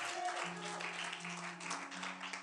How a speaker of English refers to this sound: It's okay to clap. You should actually clap at revelation more than testimonies.